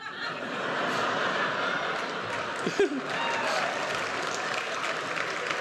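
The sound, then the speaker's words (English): A steady wash of audience applause, dense and even throughout, with a brief burst of laughter or a voice rising briefly near the middle. “Don't applaud that.”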